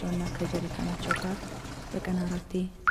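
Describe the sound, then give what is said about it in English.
Water from a natural spring in a hillside trickles and pours steadily into a shallow dug-out catch basin a couple of meters long and centimeters deep, a continuous gurgling flow, with a low murmuring voice faintly underneath. “The well is not much of a well, it's more of a puddle, a natural spring in the hillside, water flowing out.”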